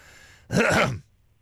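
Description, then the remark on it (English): A single deliberate cough made as a test, short and rough, a half-second burst with quiet room tone before and after and no talking. “Do a cough then.”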